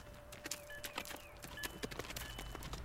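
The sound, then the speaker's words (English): Horse hooves clip-clop along in a quick, uneven patter of sharp strikes during a horse ride from a valley, over a soft steady hum with a few faint chirping tones in the background. “The whole horse ride from the valley, he's been glaring at him.”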